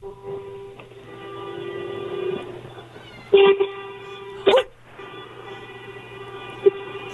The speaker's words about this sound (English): Start honking your horn. I want to hear if anybody else starts honking with you.